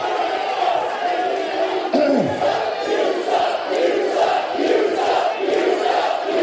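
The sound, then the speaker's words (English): A large arena crowd at the Impact Zone jeers, roaring and shouting continuously, a dense wash of many voices rising and falling in hostile-sounding waves, loud throughout with no single voice standing out. “Not much respect from the crowd here at the Impact Zone.”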